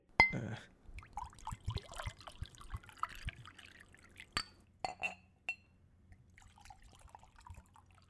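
Whiskey gurgles and splashes into a glass with a bottom shaped like the Matterhorn, followed by several sharp glass clinks and a few soft drips as the pour tapers off, with no talking.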